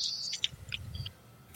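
Faint, low owl hoots overlap in a soft chorus all around in a forest, with a few thin, high chirps flickering above them in a quiet night setting.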